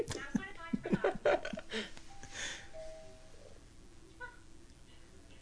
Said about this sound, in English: Why would Rob ring the doorbell at his own fucking house? Because he's a little ashamed of how he acted.